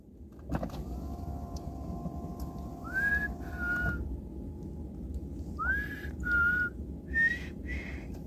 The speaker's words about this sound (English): And it's three times and it stops. Three times and it's... And they're all evenly spaced apart. Do you notice that? Yeah. This is the third time we've gotten three whistles.